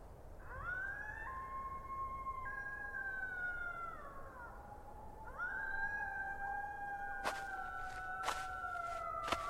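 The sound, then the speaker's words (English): Several coyotes howl together at night, their long wavering cries sliding up and down and overlapping, with a few sharp yips breaking in near the end, steady throughout. “You don't have to worry about coyotes.”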